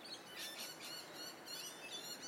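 bird, birds singing outdoors

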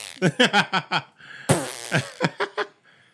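human body sound, long fart

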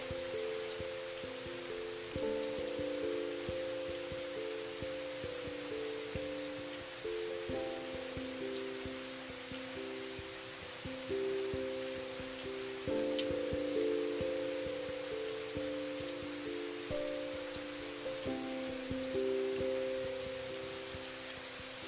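nature, gentle rain falling

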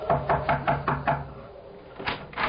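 household object, knocking on a door

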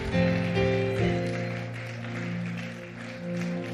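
crowd, audience clapping

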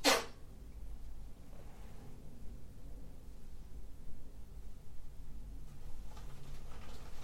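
human body sound, sneezing

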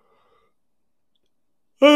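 human body sound, person yawning

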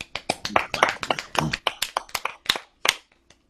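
crowd, people clapping

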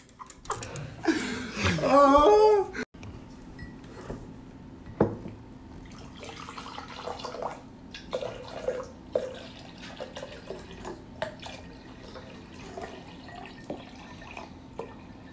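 food or drink, drinks being poured

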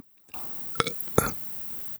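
human body sound, burp

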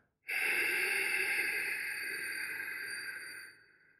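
human body sound, slow deep exhaling breath

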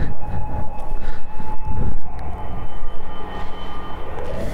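signal or alarm, siren passing outside

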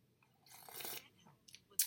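food or drink, sipping coffee

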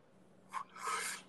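human body sound, yawn

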